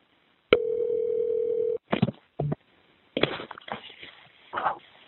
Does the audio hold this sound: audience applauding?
no